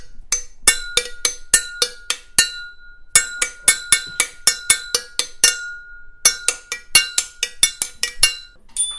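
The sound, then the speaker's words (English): Metal tubes struck like a xylophone, a rapid run of bright, ringing hits in shifting pitches, some notes sustaining briefly, played in quick bursts with a short pause midway and no talking. “especially as you change the different tubes that you're playing. It's kind of like, you know, imagine kind of like a mashup of a like a xylophone”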